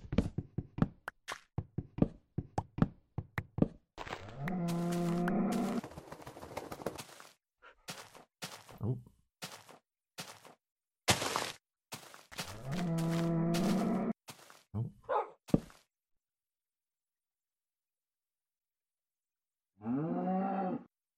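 A cow moos three times, each call long and drawn out, with a rapid series of sharp knocks and taps filling the gaps between the moos. Nobody speaks.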